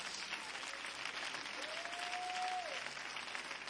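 An audience at a sermon claps their hands in praise steadily throughout, a dense, continuous wash of many hands applauding at an even level, with a faint sustained tone briefly rising above it midway.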